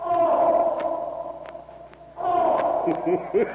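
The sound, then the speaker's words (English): Black Moloch, a raging bull elephant in a jungle corral, trumpets loudly in two long, brassy blasts, the second rising after a brief dip, with a few sharp clicks scattered over the sustained bellow. “several Taurian slaves stand uneasily eyeing the loudly trumpeting jungle titan”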